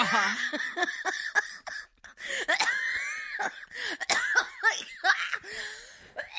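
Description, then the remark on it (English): A producer coughs: a run of rough, wheezy coughs, fairly loud, with sharp bursts coming one after another and strained, whistling breaths between them, lasting several seconds. “No, but our producer just coughed.”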